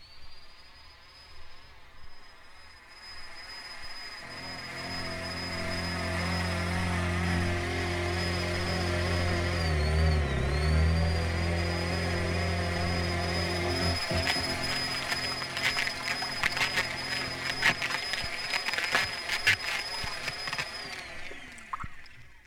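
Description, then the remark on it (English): A Black and Decker cordless power drill whirs steadily for about twenty seconds, a high motor whine over a buzzing hum, dipping briefly midway, with rattling clicks near the end before it winds down. “You mean some Black and Decker dome pillow word, shit, one man. Of those cordless kinds.”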